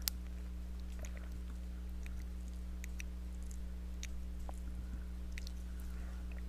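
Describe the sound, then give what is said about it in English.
Quiet mouth sounds of someone taking a little sip of a chocolate protein drink: small wet clicks and swallows scattered over a steady low electrical hum, with no talking. “I didn't eat lunch, and I have this little protein chocolate drink here, so I'm going to take a little sip.”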